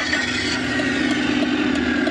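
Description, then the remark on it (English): A car's combustion engine runs loud, a steady rumbling drone with a buzzy rasp on top and slight surges, with no voices over it. “Why not just make it sound like a car?”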